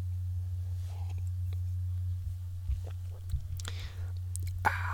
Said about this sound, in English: As I take a sip of coffee, as I wait for my piece of shit HP computer to load.